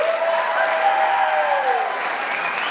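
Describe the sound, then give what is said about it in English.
A crowd at Wichita State University, including student athletes, applauds itself, clapping steadily and loudly, a dense, even wash of applause with faint whoops or tonal sounds drifting through, holding at a constant level for the full few seconds. “Let's give yourselves one more round of applause.”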